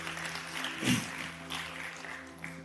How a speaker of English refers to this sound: Come on, give me a hand clap today.